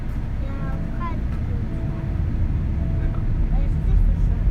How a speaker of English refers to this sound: Just a short traffic jam. There's a lot of cars. There is a few cars, yeah. A lot of cars.